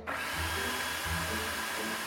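A food processor runs with a steady, loud motor whir and grinding hiss, holding an even pitch throughout with a low rumble beneath and no voices. A home management teacher is showing a student how to operate it in a school kitchen.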